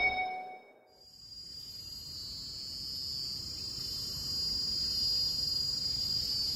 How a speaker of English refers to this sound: This time, we've come out to Mount Faber Park to record a blend of chimes and chirps.